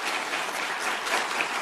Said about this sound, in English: The people who are applauding are sitting behind Mark Zuckerberg of Meta Facebook. These are people who are family of those who have been exploited and hurt because of connections online.